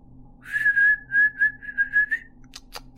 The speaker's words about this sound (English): He called the dogs' names and whistled out.